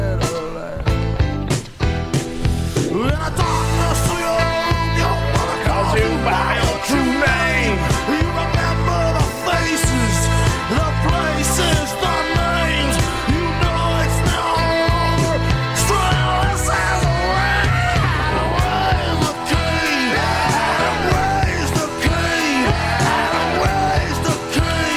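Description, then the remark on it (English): A loud, dense rock track where a male singer yells and screams at full force over pounding drums and distorted guitars, the strained vocal staying up front without a break. “Just, like, full fucking throttle, just yelling.”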